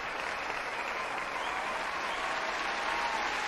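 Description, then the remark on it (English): Steady audience applause, a dense wash of many hands clapping at an even level for the whole stretch, with no voices rising above it. “I gotta get my applause first, y'all.”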